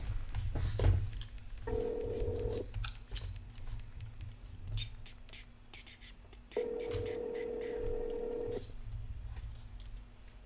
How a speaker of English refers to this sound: All right, now we're going to take a little break and make a phone call really quick.